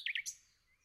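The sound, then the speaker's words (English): A recorded bird call played from a bird app: three bright chirps, two sharp notes and a higher third one, clear, fading out after under a second with no voices. “So you can press play on multiple various or variations of its bird call and communicate with the bird in such a way that it will almost often, always, fly over to you.”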